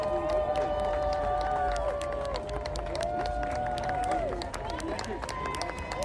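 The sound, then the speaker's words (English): A large crowd cheers loudly and steadily as a drag performer leaves, a dense wash of overlapping voices with shouts and scattered claps rising throughout, sustained for the whole stretch. “And it was good to hear, like, everyone cheering when the drag performer left.”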